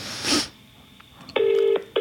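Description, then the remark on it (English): Telephone dialing tones as someone phones Dave Spikey: a brief rustling burst, then a steady electronic tone held for under half a second, followed by a second tone starting just after, loud. “Please, Dave, answer the phone.”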